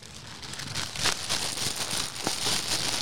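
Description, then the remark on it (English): Crinkling plastic packaging being pulled and torn open, a steady rustle with sharper crackling bursts throughout, no voices. “Open the package.”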